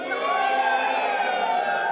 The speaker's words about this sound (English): The crowd cheered.